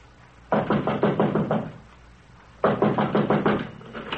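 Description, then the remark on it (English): Two bursts of rapid, firm knocking on the locked wooden door of Mr. Ackroyd's study, each a quick run of about six or seven raps, separated by a short pause, with no voices. “Door's locked.”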